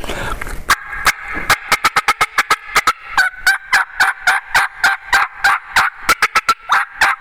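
A fast, excited run of wild turkey cutting: loud, sharp clucks fired off in an uneven, rapid rhythm, some rising into short yelping notes, with no talking over them.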